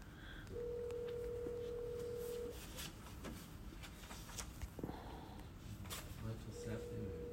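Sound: telephone dialing tones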